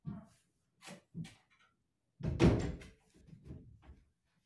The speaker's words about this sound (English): Someone just came in the door.